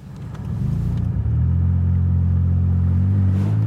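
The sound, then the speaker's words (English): A vehicle engine drones steadily while driving off-road, a deep rumble that swells as it picks up speed and then holds a low, even tone. No one speaks. “So we're driving home from the satellite dish truck off-road in River.”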